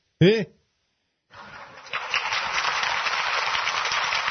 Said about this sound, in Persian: تشویق تماشاگران.